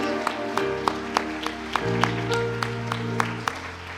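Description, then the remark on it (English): Hands clap in a steady, even rhythm, roughly three beats per second, over sustained organ-like chords, like an audience keeping time with music, clapping to give the Lord praise. “Clap your hands. Give the Lord praise.”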